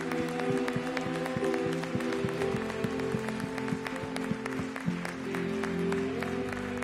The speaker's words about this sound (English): Come on and give Jesus, the head of the church, a hand clap of praise. Come on, give him your best praise.